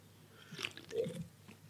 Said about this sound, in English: A quick sip as well, see what the fuss is about.